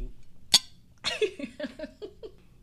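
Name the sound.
glasses clinking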